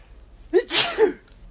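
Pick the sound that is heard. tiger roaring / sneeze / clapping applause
sneeze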